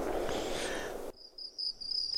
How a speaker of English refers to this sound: Well, on that note, the crickets start chirping.